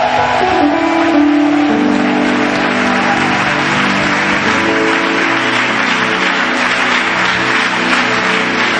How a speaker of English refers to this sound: Are you happy to be here? Show it with a louder hand clap unto the Lord.